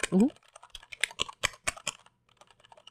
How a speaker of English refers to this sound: like holding the keyboard, I feel like there is a difference, but it's not a tremendous difference. I can see why you say they're quiet. Even when I'm pounding the switches, they seem pretty sedate